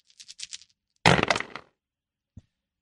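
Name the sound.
dice being rolled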